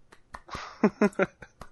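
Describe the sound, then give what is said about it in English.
A few soft, sparse hand claps tap out slowly and quietly as a golf clap for news that Apex Legends passed 25 million players in a week, with brief murmured vocal sounds mixed in between them. “Golf clap.”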